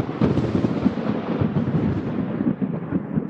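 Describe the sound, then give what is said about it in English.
A thunder sound effect: a deep, continuous rumble rolls for several seconds, loud, with crackling texture over a heavy low-end boom and no voices. “I mean, we even have lightning.”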